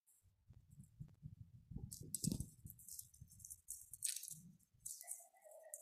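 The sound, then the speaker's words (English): A chocolate foil wrapper crinkles and rustles as it is slowly unwrapped, with irregular soft crackles and sharper bright crinkles. No one speaks, and a faint steady tone appears near the end. “Let's unwrap it really slowly and hear if there are any sounds.”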